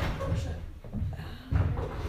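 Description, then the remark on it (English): A door bangs shut with a heavy, low thud, followed by muffled rattling and indistinct murmuring in the background. “There's like this treacherous door.”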